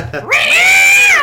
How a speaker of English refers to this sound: I think they just used some fighting cats.